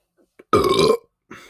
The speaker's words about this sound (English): Well, there it is. Well, excuse me guys, I didn't mean to burp in the mic here